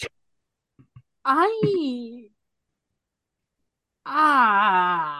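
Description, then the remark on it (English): Two loud, voiced gasps from a single person: a sharp, rising-and-falling first one, then after a short silence a longer, wavering second one, like a shocked intake of breath with sound. “The gasp, I gasped.”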